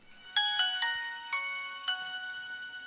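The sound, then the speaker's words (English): A Nokia mobile phone ringtone plays a short melody of bright, electronic beeping notes, three quick tones then a few spaced ones, clear with no voices. “Nokia.”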